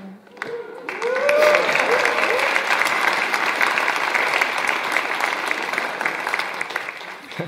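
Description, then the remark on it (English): An audience bursts into sustained applause, dense clapping that swells within the first second and holds steady and loud to the end, with faint cheers or whistles rising briefly near the start. “That applause is for God.”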